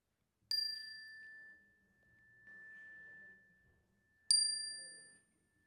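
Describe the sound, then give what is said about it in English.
A chime is struck twice, several seconds apart, to open a collective prayer, each strike ringing out with a clear bright tone that lingers and slowly fades. “At the sound of the chime, you are invited to say aloud the names of anyone who could use some extra supportive energy this morning.”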